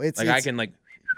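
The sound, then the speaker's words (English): A short voiced sound gives way to a brief pause, then a quick, sharp, high-pitched whistle from a person, loud, cutting off abruptly at the end. “And they just do this. Whistle.”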